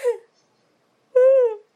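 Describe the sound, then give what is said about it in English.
A short breathy sound, a pause, then a drawn-out voiced yawn, a fairly high, whiny tone that rises slightly and sags before fading out. No one talks. “It's a yawn.”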